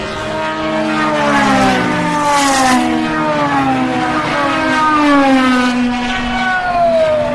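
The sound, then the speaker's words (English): Several race cars scream past at speed one after another, including the number 22, the new Aston Martin 009 with a V12 engine, their high-pitched V12 engines wailing and dropping in pitch as each sweeps by, loud, with no talking. “That's Vanina's car. The number 22 sings the V12.”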